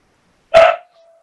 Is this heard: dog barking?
yes